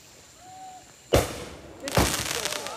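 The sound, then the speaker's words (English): Two sharp backyard firework blasts ring out about a second apart in Texas on July 4th, 2017, the second followed by a crackling, sizzling tail, with a faint whistle in the quiet beforehand. “This is fireworks in Texas.”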